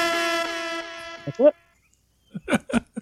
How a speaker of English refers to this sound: I'm going to say that the air horn is not a "you must stop talking now." The air horn is just a "be aware of the fact."